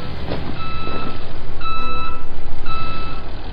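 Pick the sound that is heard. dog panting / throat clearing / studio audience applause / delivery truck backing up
delivery truck backing up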